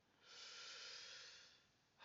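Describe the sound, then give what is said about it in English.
A single long, deep breath drawn in, a steady airy hiss lasting over a second before fading, with another breath just starting at the end. “Breathing.”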